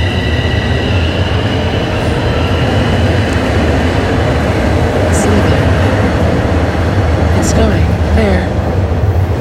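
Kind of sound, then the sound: vehicle, train departing from station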